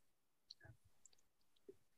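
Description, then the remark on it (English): A handful of faint, irregular key clicks tapping away quietly, as if someone is typing on a keyboard, with no voices present. “A lot of typing going on here.”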